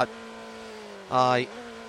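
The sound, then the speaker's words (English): A steady engine drone hums throughout, then a louder burst of rising, whining revs swells briefly as a race car roars past before settling back to the lower hum; the car has just gone to the top of the timing with a lap of 1:36.281. “The engine noise in the background is that of Kevin Estra”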